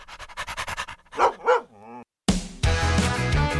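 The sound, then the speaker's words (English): A dog pants in quick rhythmic bursts, lets out two short barks and a wavering whine, then loud music abruptly takes over. “That's a good dog.”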